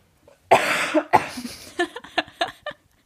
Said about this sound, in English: Wait, let me just cough.